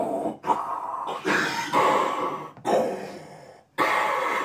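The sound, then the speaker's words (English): A person growls and roars in imitation of the lion Mufasa, several rough, breathy bursts in a row, loud, with brief gaps between them. “Mufasa appears Mufasa and goes. Listen, and he roars.”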